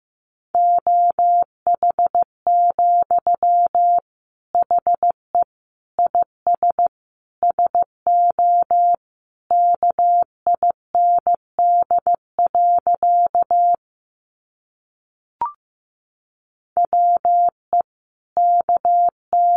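Morse code practice sentences from the top 500 words, sent at a moderate 15 words per minute: a steady, mid-pitched beep keyed into short dots and longer dashes, with a brief pause and a faint click before the signal resumes.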